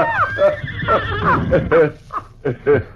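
A horse whinnies in a series of short, wavering, high-pitched bursts, fairly loud, with brief pauses between calls and no talking over them.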